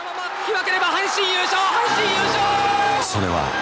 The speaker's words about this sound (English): And the crowd goes wild. There are people sobbing. They are so excited. There's all this pent-up excitement.